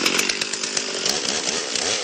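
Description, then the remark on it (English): A chainsaw roars steadily as it carves into a big piece of wood, its loud, buzzing engine whine holding constant throughout, with no voices present. “He's got a chainsaw, and oh, yeah.”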